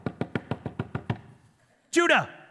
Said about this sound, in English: And one day somebody comes running up to Judah's house, knocks on the door.